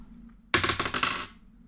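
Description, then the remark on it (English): Dice clatter and rattle across a hard tabletop in a quick burst of sharp clicks lasting under a second, fairly loud, then settle into quiet, as attack rolls are made in a tabletop game. “So hit the other two dice.”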